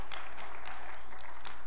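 An audience claps together in a steady, dense burst of applause, many overlapping hand claps forming a bright crackling wash at moderate volume, with no voices and a faint low hum underneath.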